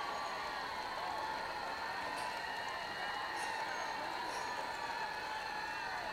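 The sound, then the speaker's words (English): Steady, thunderous applause from a large crowd as a speaker gets up on a stage, with mixed cheering and murmuring blended into a continuous wash of noise that holds at an even level throughout. “Edwards got up on the stage to the thunderous applause of the crowds.”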